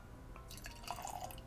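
100-proof whiskey pours into a glass with a soft splashing trickle, then a brief gurgling rise near the end. Quiet and steady, with no voices.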